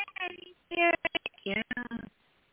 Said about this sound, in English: Your phone breaking up. Oh, the mic. I'm sorry. No, I don't know why. All of a sudden, it just started chopping up.